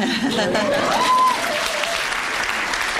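A crowd breaks into steady, dense applause with cheers and a few whistles rising over it, the clapping sustained and loud for the full stretch, as the audience at a live interview responds to mention of the famous misogyny speech.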